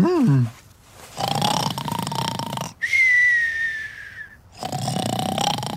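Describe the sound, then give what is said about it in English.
Cartoonish snoring of someone fast asleep in bed on a bright summer morning: a rasping, rumbling inhale, then a long whistling exhale that slides gently downward, followed by another rattling snore, repeating in a slow, steady rhythm. “It's a bright summer's morning in Higgledy Piggledy, but someone is still fast asleep in bed.”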